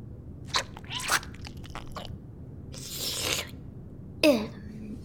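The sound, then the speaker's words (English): Eating sounds: several crunchy bites and wet chewing, with a slurp, broken by short pauses against a low background hum. “We were just doing some eating, right?”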